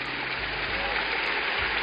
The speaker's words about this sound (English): If you are clapping for Jesus, make it bigger.